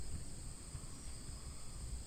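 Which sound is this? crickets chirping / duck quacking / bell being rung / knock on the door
crickets chirping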